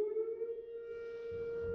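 signal or alarm, tornado warning siren

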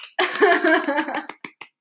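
human body sound, clapping

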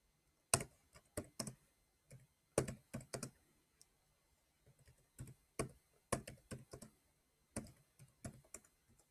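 household object, typing on a keyboard

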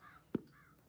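sound effect, crow cawing sound effect

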